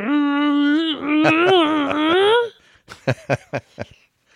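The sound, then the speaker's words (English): A voice imitates a dog groaning in his bed as he tries to get comfortable, cold and half trying to burrow: a long, whiny, wavering groan that rises at the end, followed by a quick run of short, breathy grunts. “He's kind of funny with the grunting and the groaning.”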